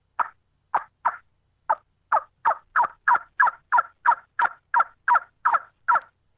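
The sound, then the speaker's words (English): A hen turkey yelp sequence made on a turkey call with the lips tightened: about seventeen short, raspy, mid-pitched notes, starting spaced out, then quickening into a steady, even rhythm, with no talking. “You want that hen yelp.”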